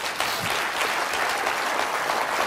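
An audience bursts into applause, clapping for Jesus at the preacher's call, many hands clapping at once in a dense, steady wash of sound that holds at an even, fairly loud level for a couple of seconds, with no talking.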